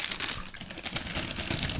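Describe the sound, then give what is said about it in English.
A dense, continuous rush of crinkling plastic wrappers as a pile of cough drops is dumped out, with rapid small clicks and rustles layered throughout, fairly loud and with no voices. “You are going to eat cough drops through the entire thing. I was planning on it. Here. I'm going to dump all these out.”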